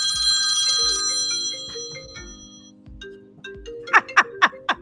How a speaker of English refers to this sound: That's not, is that an iPhone ringtone? My phone don't ring like that.